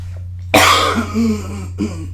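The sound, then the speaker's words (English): A dry, harsh cough from a persistent, itchy throat bursts out, trailing into a rasp, followed by a second, weaker cough a moment later over a steady low electrical hum. “This goddamn cough is so fucking annoying.”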